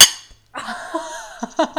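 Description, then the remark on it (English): A single sharp, bright clink of drink cans tapped together in a toast, followed by quieter handling noises and soft murmuring; the cans are mint green and pastel pink with two lovebirds on a tree branch. “Cheers, me. Cheers.”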